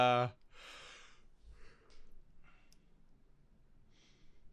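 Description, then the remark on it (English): A single drawn-out yawn from one person, opening with a brief voiced groan and trailing into a long, breathy exhale with a few softer breaths after. “Extended yawn break. I apologize.”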